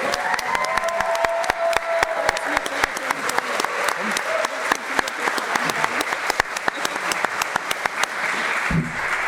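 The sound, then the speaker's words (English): An audience breaks into steady applause as special guests come up, dense overlapping claps sustained for the whole stretch at a fairly loud, even level, with a murmur of voices beneath. “So give them a round of applause as they come up.”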